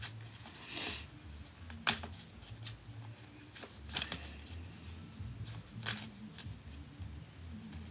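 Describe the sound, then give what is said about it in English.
A deck of reading cards being shuffled, with repeated soft riffling bursts and light papery flicks at an irregular rhythm, fairly quiet with no talking. “So this one keep popping out, but it's kind of like stuck. We'll shuffle that one in.”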